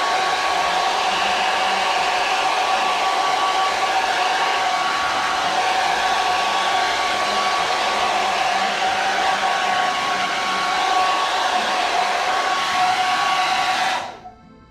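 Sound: blow dryer running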